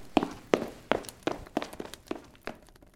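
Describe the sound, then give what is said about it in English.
A run of about eight footsteps of someone going upstairs, in a steady, brisk rhythm, each a dull thudding tap, growing slightly softer toward the end. No one speaks. “Yeah, I'm going to go upstairs and just board shut a couple windows and a couple...”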